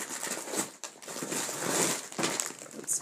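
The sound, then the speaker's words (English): A plastic grocery bag crinkles and rustles continuously for a few seconds, a dense, crackly, hissing sound with bright sharp peaks and brief dips, and no voices. “Well, this isn't the snack bag. This is a recent grocery bag.”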